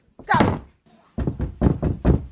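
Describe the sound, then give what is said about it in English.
A door swings shut with a solid thunk, followed by a quick run of four muffled thuds in a steady rhythm, with no talking. “Here's the door. Go.”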